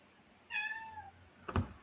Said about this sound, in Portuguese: Oh, o teu gato está a miar. Pois, eu acho que estava na dúvida se era o meu.